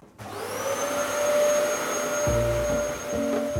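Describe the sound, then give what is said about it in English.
A vacuum cleaner starts up, its motor whining up to a steady, loud roar with a high tonal hum, joined by a few low bumps near the end. “Should I get the Hoover?”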